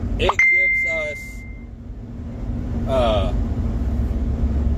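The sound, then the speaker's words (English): A phone's message notification chime: one bright, sharp ding that rings on as a steady high tone for about a second before fading, over a low constant hum with brief murmured voice-like sounds. “Sorry, somebody messaged me. Sorry, I need to put my fucking phone on silent.”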